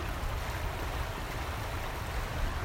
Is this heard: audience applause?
no